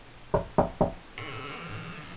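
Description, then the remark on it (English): Three firm, evenly spaced, loud knocks on a door, followed by a steady, higher-pitched sustained sound with no talking. “Okay, we're about on time. I'll knock. Anybody home?”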